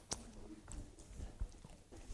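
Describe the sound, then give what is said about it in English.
Crunchy chewing of chalky mints, with a sharp crack at the start followed by irregular grinding and crunching bites, loud, with no talking. “Let me chew this before I take a very serious turn.”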